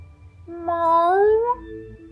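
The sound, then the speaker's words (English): A single drawn-out meow from a puffy orange cat that rises in pitch and then trails off, heard alone against a quiet background. “The orange cat looked at Reggie with wide, empty eyes.”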